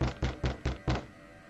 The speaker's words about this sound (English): And this time, the knocking was loud enough to rattle the door.